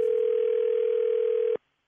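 A telephone dial tone hums as a call is placed: one steady, unbroken mid-pitched tone, loud and constant, that cuts off abruptly after about a second and a half, leaving silence.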